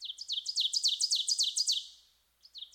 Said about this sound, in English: We're hearing some twitterings from the rose-breasted grosbeak, as well as the oven bird, and perhaps even the northern water thrush.